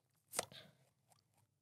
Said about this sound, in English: And that was me, like, I don't know what I was doing there, like, chewing my mouth.